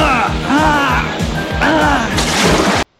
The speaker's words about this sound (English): Then Rax jumps into the sub part, and Gator leads him right into a pillar of rocks. Well, it sends the Piranha sub into a loop-de-loo, then ends up crashing, giving Rax a hot seat.